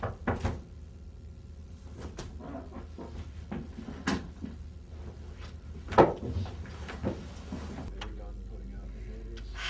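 A door is pushed closed with a solid thump, surrounded by scattered knocks and clicks over a steady low rumble that quiets near the end.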